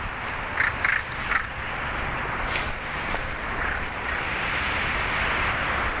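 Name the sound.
water lapping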